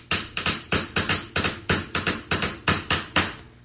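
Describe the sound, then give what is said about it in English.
A new bamboo toothbrush, rolled up in a piece of paper, is tapped to play a little tune in a quick, uneven rhythm, about a dozen crisp woody knocks, each sharp and short with a brief ring. No one speaks. “I was just playing a little tune on my new bamboo toothbrush here.”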